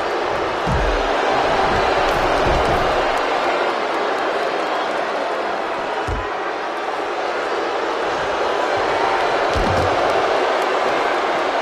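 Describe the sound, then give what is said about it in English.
A wrestling suplex slam lands on the ring mat with deep, heavy thuds, a few spaced impacts rising out of a constant loud crowd roar that fills the whole scene. “goes to pick up Luger. And hits him with a suplex.”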